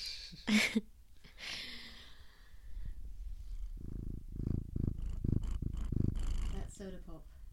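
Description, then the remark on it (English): A cat sniffs right up against the microphone in a few sharp, breathy bursts, then settles into a rumbling purr that pulses in a steady rhythm. “Soda pop sniffing the mic. Dropping some pearls, some purrs of wisdom.”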